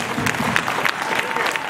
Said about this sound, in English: So let's give a round of applause for Dr. Ben.